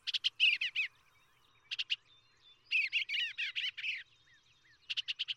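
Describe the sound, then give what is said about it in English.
A bluebird's soft, warbling call repeats in several short bursts of bright, chirping notes, with brief pauses between phrases, clear against a quiet background. “The bird is generally a mere disembodied voice, a rumor in the air for 2 or 3 days before it takes visible shape before you.”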